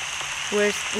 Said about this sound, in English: We're wet. It's raining outside. It's raining inside. So that's the app that I would listen to.